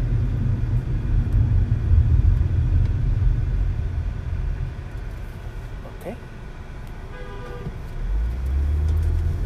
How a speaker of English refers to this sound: Gotta love drivers. Yeah, drive right up my road. This is live podcast, I tell you. We always run into some traffic issue when we do these. Oh, my goodness. People are in a hurry to go nowhere in a box.